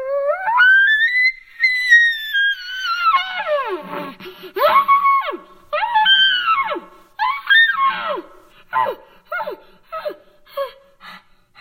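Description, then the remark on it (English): A six-year-old girl from Fruta imitates an elk bugle: one long, high, whistling cry that rises and slowly falls, followed by a string of shorter, descending squealing grunts in a choppy rhythm. “She recently took fourth place in the Pee-wee division of the World Elk Calling Championships.”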